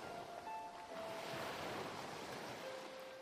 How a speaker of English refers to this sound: Then you exhale, watching as the waves crash against the shore.